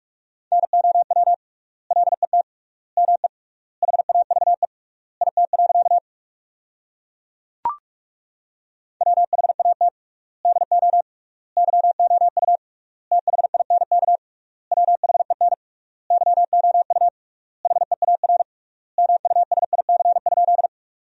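Rapid Morse code at 45 words per minute with triple word spacing, sending sentences made from the top 300 words, as a single steady mid-pitched beep keyed in quick bursts of dots and dashes grouped into words with long pauses between them, plus one brief click midway.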